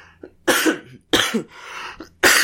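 A person coughs three times in quick succession, each cough a loud, harsh burst with brief pauses between, and no talking alongside.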